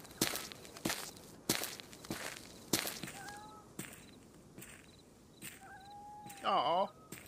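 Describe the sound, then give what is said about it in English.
A cat meows a few times in the background, with a louder, drawn-out yowl near the end, while sharp rhythmic thumps like footsteps or taps sound throughout. “You're the kitty cat in the background.”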